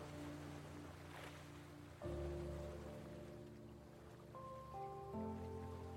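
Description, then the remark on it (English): Water splashes and gurgles against the hull of a moving sailboat as it cuts through a gentle swell, a continuous wash with a steady low droning hum underneath that grows fuller partway through. “The splash and gurgle of the water as the boat cuts through the gentle swell.”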